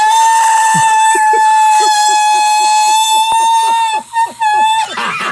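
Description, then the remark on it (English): A voice holds one loud, piercing high note steadily for nearly five seconds, as if straining to shatter a wine glass, while quick rhythmic chirps patter underneath before the note cuts off. “Breaking a wine glass with your voice.”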